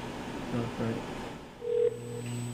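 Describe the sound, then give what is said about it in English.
A phone call dialing over a speakerphone, with thin, steady electronic tones and a brief brighter beep, slightly tinny, with a faint muffled murmur early on. “Turn up the phone.”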